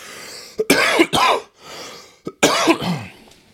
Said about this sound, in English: And, that coughing just... I think I almost passed out there.